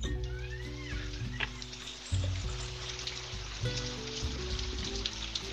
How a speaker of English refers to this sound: It's raining.